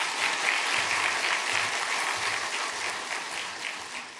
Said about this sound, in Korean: 오늘 말씀 전해주시는데 우리 한번 크게 박수함으로 환영하겠습니다.